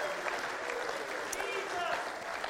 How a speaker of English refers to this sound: Come on, Word of Life. Somebody clap your hands and praise him. Right now, just praise him.